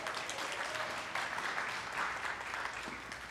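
An audience applauds together, a dense, steady wash of many hands clapping at an even level for a few seconds without letting up.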